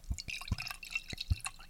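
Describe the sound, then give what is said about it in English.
Wine pours into a glass in a series of irregular glugs, each with a soft low gurgle and a bubbly, splashing hiss on top. Fairly quiet, with no voices. “I need a glass of wine before.”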